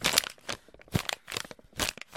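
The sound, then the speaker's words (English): A paper packet crinkles and rustles in several bursts, with sharp crackling handling sounds repeating irregularly over a couple of seconds, no voices. “Is it foil pack or paper?”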